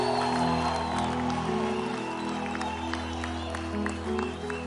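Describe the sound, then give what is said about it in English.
An audience claps hands for the ECG pastor in a dense, steady patter with a few sharper claps standing out, over a sustained droning musical tone that holds throughout. “And you can't even clap hands for that.”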